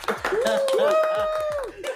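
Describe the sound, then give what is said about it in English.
A crowd breaks into applause, a dense patter of clapping lasting about two seconds, with a rising and falling whoop or voice riding over the claps. “Give a big round of applause for no more marriage.”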